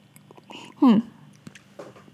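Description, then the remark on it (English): A sip of honey rum, with soft mouth clicks and a brief, louder voiced exhale in the middle of the short clip. No one speaks. “Let me have a sip of my honey rum.”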